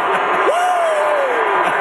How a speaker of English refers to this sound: Travis Kelce's being interviewed. And listen to the crowd. It's almost like The Rock showed up and all the We Want Cody people were offended. Like, listen to this crowd at Travis Kelce.